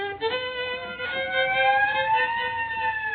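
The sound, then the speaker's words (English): A police squad car siren wails steadily as the squad car pulls up, its tone slowly climbing in pitch with rich harmonics, loud and continuous across the whole clip with no one talking. “I just started playing and already the neighbors got the police here. No, it's a squad car pulling up.”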